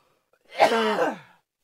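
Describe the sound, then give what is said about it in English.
A single throaty cough, voiced and somewhat drawn out with a falling, groaning tone, lasting under a second. It stands alone with no talking around it. “Now with added cough.”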